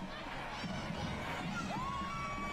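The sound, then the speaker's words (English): A dense crowd at a costume parade in New York roars and cheers continuously, with scattered high screams and whistles rising above a steady wash of many voices, loud throughout. “A lot of screaming.”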